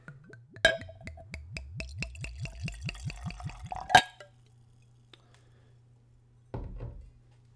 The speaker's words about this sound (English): So what I've got here is Tullamore Dew. I have a 1 liter bottle. It is 40% alcohol by volume, making it 80 proof. All right, moment of truth. Let's open this bottle. Screw cap. All right, let's get a pour here.